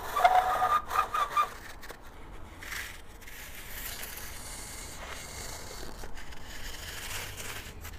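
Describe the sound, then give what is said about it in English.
A squeaky, grating scrape sounds in short bursts at the start as something scrapes across the roof of a cottage in strong wind, then gives way to a steady rushing wind noise that carries on without any voices. “And, you know, obviously I have the lights on in the cottage, but, you know, it's so windy. You hear that scraping on the roof.”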